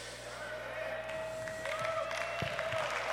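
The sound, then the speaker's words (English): An audience breaks into a dense wash of hand clapping that builds slightly and holds steady, with a few sharper individual claps standing out over a low, constant hum. “Oh yeah, that's worthy of a hand clap.”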